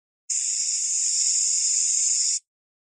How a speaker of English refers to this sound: That's a tough one. Is that like, is it what, like, what is it? Aerosol spray.